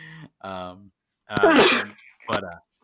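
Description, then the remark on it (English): A loud sneeze: two short voiced breaths build up, then an explosive burst of noise, followed by a smaller second burst. “And that was the last, well, I meant just the sneeze, but whatever.”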